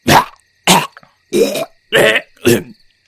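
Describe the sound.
A voice imitates a werewolf spitting out a string: five loud, rough, throaty bursts in a steady rhythm, each ending abruptly with short pauses between.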